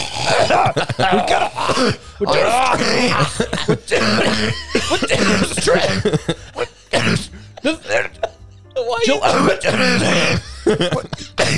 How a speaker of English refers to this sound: I breathed in a bit of flaky pastry and it got me and I like fully choked sitting on my desk